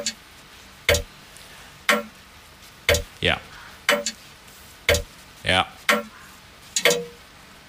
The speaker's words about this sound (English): There you go. That was a grandfather clock.